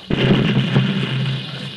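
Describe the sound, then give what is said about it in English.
A cannon at a mission fires a single shot in front of a charging brigade to stop their charge: a sudden loud boom followed by a rumbling roar that lingers and slowly fades, with a smaller crack partway through the tail. No one speaks. “The cannon. Make ready to fire.”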